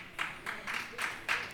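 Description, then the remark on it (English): Scattered audience applause, fairly faint, rising and falling in several short swells of hissy clapping over about a second and a half, with no voices over it. “I think some people applauded because they were convicted, and some people didn't applaud because they weren't convicted.”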